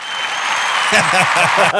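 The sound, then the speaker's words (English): An audience claps steadily in a dense, continuous burst, with a voice briefly talking over the applause partway through. “Give that man an applause. Give him the applause.”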